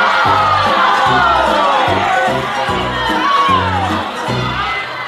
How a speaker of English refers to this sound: The crowd screams. I heard people in the crowd renouncing their faith right there, just shouting out.